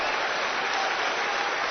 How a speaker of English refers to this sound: The crowd is standing up, applauding, waving fans.